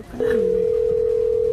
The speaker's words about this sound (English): Just go listen for her phone ringing on the stream.